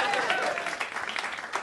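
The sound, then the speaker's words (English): A comedy audience at the Chippo Hotel claps steadily in a dense, crackling wash of applause, with scattered cheers and whoops rising over it at the start, sustained at an even level throughout, cheering a comedian's joke about his death. “Let's hear it for my death!”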